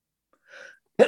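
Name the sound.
sneeze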